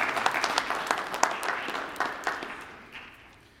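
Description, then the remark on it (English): An audience applauds a singing ensemble at a live Christmas entertainment event, with dense, crackling clapping that starts strong and gradually thins and fades over a few seconds, with no voices over it. “Let's give them a wonderful round of applause.”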